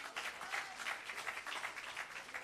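A crowd claps together in a steady wash of applause, dense overlapping hand claps with a slight pulsing rhythm, moderately loud throughout with no voices standing out.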